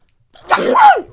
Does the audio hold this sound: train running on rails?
no